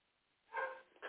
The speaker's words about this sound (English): All right, Auntie, this dog is just still barking.